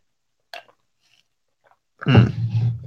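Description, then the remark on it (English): A brief wet mouth click, then a second of loud, crunchy chewing with a low muffled hum underneath, the kind of noisy mastication of someone eating a chicken nugget. “Sorry, I'm chewing a nugget.”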